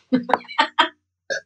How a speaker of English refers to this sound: Another burp coming. Pardon me.